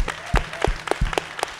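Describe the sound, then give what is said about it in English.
A brief round of audience applause for Ed Lover: sparse, fairly regular sharp claps with dull low thumps beneath, steady at moderate loudness for about a second and a half, with no one talking. “Round of applause for Ed Lover.”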